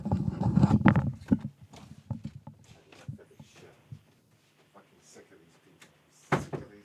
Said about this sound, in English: Would you mind if I just go and close my office door so you can hear me a little better?